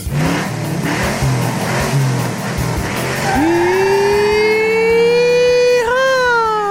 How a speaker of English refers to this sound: I can't compete with the cars running outside, though. No, they're loud. Well, I got to bring hearing protection. I didn't bring it again today, and they're loud.